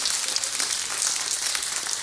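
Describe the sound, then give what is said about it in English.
A church audience claps hands in praise to God, a dense, steady patter of many overlapping claps that holds an even loudness for the full two seconds, with no voices above it. “Come on, give God a hand clap and a praise.”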